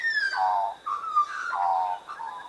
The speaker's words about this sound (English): Why do magpies sing? Well, this is a good question. Why does any bird sing?